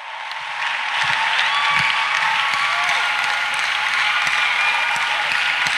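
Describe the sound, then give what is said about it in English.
An audience stands and applauds God together, a loud, steady wash of many hands clapping that swells in the first second and then holds evenly throughout, with scattered sharper claps standing out. “On your feet now, applaud. Applaud God.”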